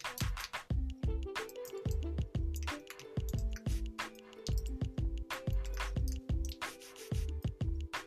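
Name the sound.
typing on a keyboard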